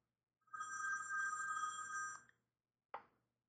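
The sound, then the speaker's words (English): A telephone rings with a steady, bright electronic trill lasting over a second, then a brief second ring starts and cuts off. The ringing is clear, with no talking. “Oh, I have a phone call. I'm just going to have to ignore it.”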